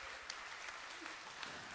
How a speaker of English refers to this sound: Yeah, you can clap for that if you want.